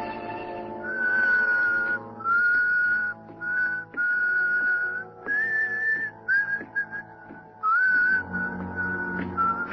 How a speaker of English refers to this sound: Remember my whistle, huh?